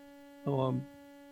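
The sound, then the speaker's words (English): A car alarm out in the parking lot gives one short, blaring honk with a buzzy, harmonic tone, cutting in briefly over a steady low electrical hum, with no one speaking. “Okay, well, after that little distraction, there's a car alarm blowing out in the parking lot for you that are listening online.”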